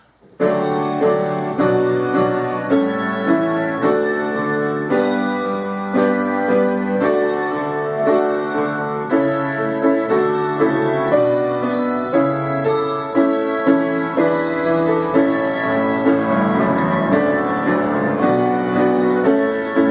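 A handbell choir, on bells spanning D3 to D7, rings a steady hymn-like tune in even, sustained half notes, chords blooming and overlapping at a regular pulse, full with no voices.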